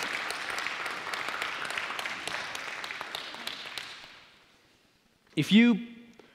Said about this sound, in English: If you lead a life group, look at that. There we go. Give these people a round of applause, serving you so well. You can sit down, thank you.